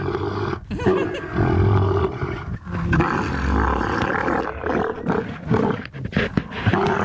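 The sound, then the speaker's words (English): A camel growls continuously during mating, a thick, guttural, rumbling roar with low throaty pulses and gurgles that rise and fall for several seconds without pause. “Here is a camel mating.”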